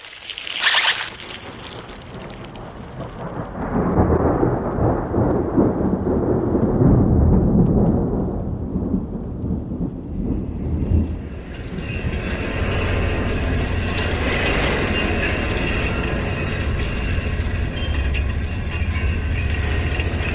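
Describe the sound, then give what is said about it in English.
A wire fence running around the perimeter of a property hums and drones as wind sets it vibrating, a steady rumbling roar that later gains thin, sustained ringing overtones, continuous for the whole stretch with no voices. “This is the sound of a wire fence that runs around the perimeter of the property, and that's kind of an interesting story because I thought this fence was such an insult to the landscape in a way.”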